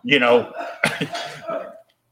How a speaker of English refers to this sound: quit coughing out there.